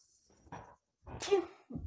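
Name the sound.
sneeze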